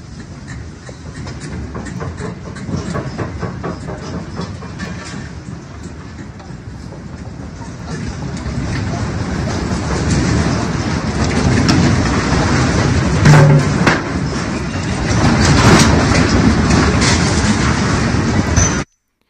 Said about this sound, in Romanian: Încet, încep să-și facă apariția zgomotele obiectelor care cad prin casă. După care, o să vedeți, începe să se audă blocul mișcându-se și vuietul acesta al cutremurului, al mișcării în întreaga zonă care cuprinde toate clădirile.